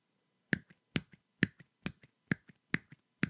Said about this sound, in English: And if you listen very, very carefully, you're about to hear a sound that's not supposed to exist. The sound of one hand clapping. Brace yourself.